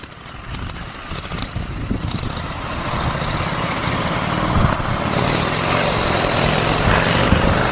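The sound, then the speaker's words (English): A motorcycle engine drones steadily with a rough, buzzing rumble as a man rides it away and then comes back, growing louder as it draws closer, with no voices over it. “He jumped out the window and hopped on a motorcycle.”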